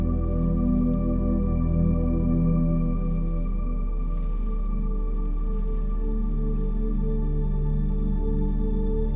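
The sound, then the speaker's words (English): Steady running water flows continuously at an even, moderate level, with faint drips and a low hum underneath and no voices. “Relax, my love, and let the soothing sounds of running water lull you into deep, restorative sleep.”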